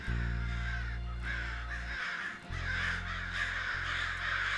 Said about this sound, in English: Now, what's got into those crows? Are they mad at me or something?